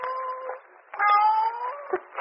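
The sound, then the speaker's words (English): A cat meows twice in quick succession from inside a wine vat in a wine cellar, its lid sealed with fresh putty. The first call is short and plaintive, the second a longer, rising wail. The sound is clear, with no talking. “It sounded like a cat.”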